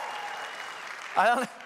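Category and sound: crowd, audience applause and cheering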